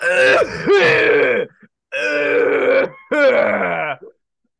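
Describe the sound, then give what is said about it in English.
A voice imitates a bad coughing fit: three loud, raspy, strained bursts of hacking and groaning, each about a second long with brief gaps between, with no other talk. “Go ahead and give me the Gareth starts coughing really bad. I got you with the Foley here.”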